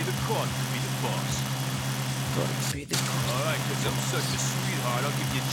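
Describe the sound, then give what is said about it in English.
A car engine in a skating video game drones steadily at a low, even idle as the player drives a vehicle, with a brief dropout partway through and faint muffled voices in the background. “Oh, one of the very first games also that let you drive a vehicle in a skating game.”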